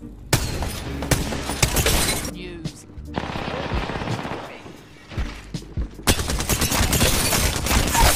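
Loud, sustained bursts of PK machine gun fire, rapid cracking shots in long strings, with a quieter stretch between two heavy volleys and faint voices in the lull.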